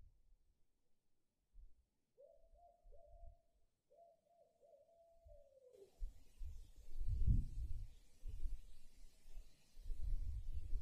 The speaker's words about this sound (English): And let the call of the owl lift you further into your caring.